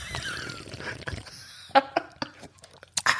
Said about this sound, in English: Hang on, let me get that slurp. That ASMR slurp.